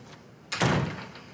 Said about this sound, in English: Would you shut the door, please?